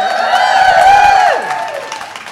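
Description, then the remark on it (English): A large crowd of about 20,000 people in a room at a live event cheers and whoops loudly, with many overlapping voices and some clapping, the roar holding strong before beginning to fade toward the end. “For people listening to this live, or listening to this, the rebroadcast, there are like 20,000 people in the room right now. So let's give them a loud cheer, everybody.”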